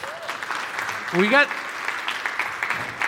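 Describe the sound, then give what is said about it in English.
A crowd claps steadily for about three seconds, a dense, even patter of applause, with a short rising whoop from one voice cutting through in the middle. “We got round of applause, please.”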